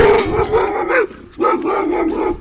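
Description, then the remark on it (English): A puppy barks and yips excitedly in two quick bursts separated by a brief pause, loud, with no talking over it. “He wants to eat my face off.”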